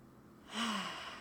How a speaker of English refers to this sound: It's a breathing technique, and it supports us in coming into the body and speaking from our being.